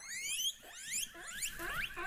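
A guinea pig squeaks in a continuous run of high, shrill whistling squeals that rise and fall in pitch, fairly loud, with no voices.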